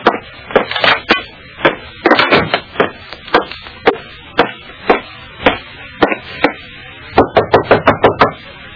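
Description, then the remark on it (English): Someone knocks on a wooden dressing room door, fairly loud, in uneven bursts of sharp raps followed by a quick flurry of knocks near the end, with no voices. “Nobody answered my knock at Janie's dressing room.”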